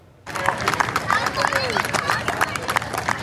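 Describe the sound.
A crowd of family and friends bursts into sustained clapping and cheering, a dense, steady wash of applause mixed with excited voices and chatter that starts abruptly and carries on throughout, welcoming a rower arriving off the southwestern tip of England after a solo row across the Atlantic in a six-metre boat.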